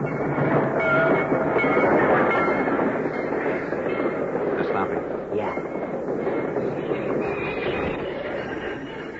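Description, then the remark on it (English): A heavy freight train grinds along the tracks in a railway cut, a loud, dense rumble with metallic ringing and screeching that stays steady before easing slightly as it slows to a stop, halted by a flare lit on the tracks. “Because the flare which stopped the train has been planted at a carefully chosen point, the train is strung from one end of the cut to the other, and right opposite the point where the two men had been huddling is a sealed freight car.”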